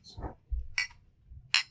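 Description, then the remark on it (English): Glasses clink together in a toast, three bright, ringing taps spaced a little apart, fairly loud over a low, muffled murmur. “Are we ready for this? Cheers. Cheers.”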